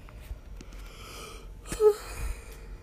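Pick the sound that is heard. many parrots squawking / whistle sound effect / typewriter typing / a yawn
a yawn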